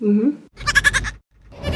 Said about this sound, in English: Okay, well, we've got some goat calls. Let's play the group one here.